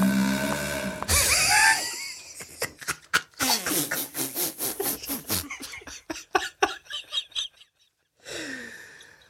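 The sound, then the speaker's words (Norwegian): A comic fart sound effect: a squeaky, wavering start breaks into a long run of rapid, loud flapping sputters that slow into separate pops, then one last raspy burst after a short gap. “Ja, skal vi kjøre fis?”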